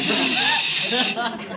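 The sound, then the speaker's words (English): A person lets out a loud, steady hiss lasting over a second, a harsh breathy rush of air with faint voiced tones underneath that wavers slightly before tapering off. “are you hissing me?”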